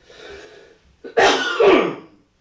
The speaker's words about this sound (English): And, you know, like right now, me coughing, and that's just from, I think it's something's about to start.